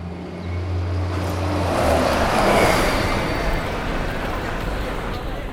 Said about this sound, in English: Buses roared past. Taxis and Ubers careened around corners. Countless people rushed into the bellies of buildings that towered over us. All I could see or hear was a city around us, speaking in honks and rumbles, in roars and beeps and dings.